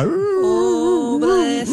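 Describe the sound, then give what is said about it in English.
A person imitates a dog's whimper: a continuous, high, wavering whine that rises and dips in pitch for under two seconds, loud with no other talking. “How did the dog go?”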